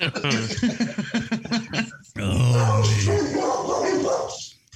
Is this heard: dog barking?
yes